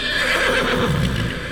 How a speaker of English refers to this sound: Then all of a sudden, the sound of a horse neighing and stomping was heard all along the asphalt road. No other sound, just a horse.